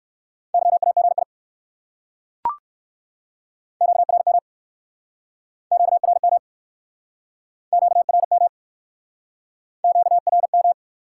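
Fast Morse code beeps sent at 45 words per minute in a steady mid-pitched tone, in five short rapid bursts with brief gaps between them, plus a single sharp click early on. No voices.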